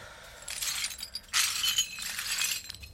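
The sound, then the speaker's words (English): Bright clinking and scraping of broken glass shards being gathered while cleaning up, with irregular bursts of tinkling over about three seconds and no voices. “Just want to clean some of this up. Just get it tomorrow. I just want to get the glass.”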